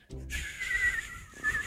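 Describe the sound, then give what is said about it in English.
A person whistles a thin, high, steady tone with lots of breathy hiss, imitating a car-mounted deer whistle, which is meant to make its tone when a car moves at about 40 miles an hour. It lasts over a second, following a brief low vocal sound. “That's a damn deer whistle.”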